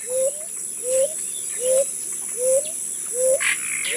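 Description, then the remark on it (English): A ground dove calls a steady series of six short, rising coo notes, evenly spaced, over a constant high buzz of insects. “At the small end are several species of ground doves of the American tropics, measuring 6 inches, not much bigger than a sparrow, and ranging from bright cinnamon brown to dark blue.”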